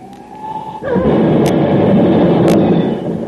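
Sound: car crash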